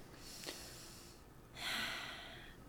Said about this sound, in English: So yeah, like really deep breathing in and out the nose and the mouth. Really, really deep breathing.